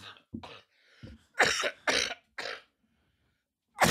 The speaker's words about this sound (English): You know what's great about our podcast? The amount of coughs included with every episode